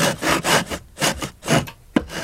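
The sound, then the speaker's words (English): A knife is tested by sawing through a sausage in about five steady back-and-forth strokes, each a rough, rasping scrape, ending with a sharp little snap as the blade gets through. No one speaks. “Can you just test it out on that sausage, please?”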